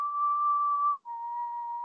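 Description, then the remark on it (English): A man whistles two long, steady notes, the second slightly lower after a brief break, producing an eerie, creepy tune with no talking. “Yo, it's just like a creepy whistle.”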